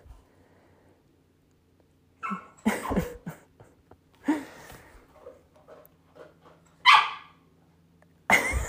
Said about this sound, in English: I don't know why this dog won't stop.